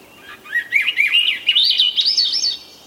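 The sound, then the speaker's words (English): A Swainson's thrush sings its flute-like spiraling song, a quick run of breezy whistled phrases climbing steadily higher in pitch, clear, with no other sounds around it. “If you're lucky, in late spring in the forests of the North and West, you'll hear the melodious spiraling song of the Swainson's thrush.”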